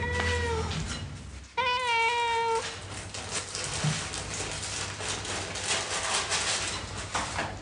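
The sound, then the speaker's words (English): A cat named Jeremy meows twice, a short call followed after a brief pause by a longer, drawn-out, insistent meow, both loud over a steady background hiss, with no one talking. “So that's Jeremy shouting at me.”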